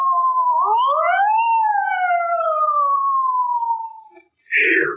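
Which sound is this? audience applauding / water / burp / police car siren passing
police car siren passing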